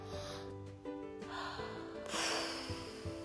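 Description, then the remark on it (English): An audible deep breath: a long airy inhale followed by a stronger, rushing exhale, with no talking over it; a person taking a deep breath in and then out. “We take a deep breath in and take a deep breath out.”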